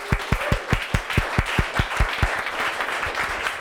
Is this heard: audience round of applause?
yes